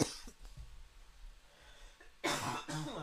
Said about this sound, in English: Oh, cough. Jesus.